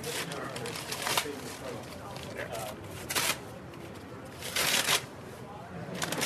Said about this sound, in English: pulling all the brown wrapping paper off. And we'll see what we got there.